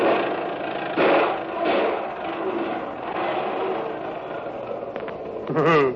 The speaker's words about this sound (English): You better get that old lady to stop that crate before it blows us all sky high. Man, please stop the engine, will you?